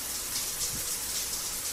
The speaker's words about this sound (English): And then, where's, next day? In the shower.